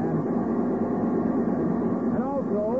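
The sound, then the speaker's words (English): Printing presses churn with a dense, steady mechanical clatter and rumble, then a whining tone bends and wavers near the end as the machinery begins winding down. “Why do they keep stopping the presses?”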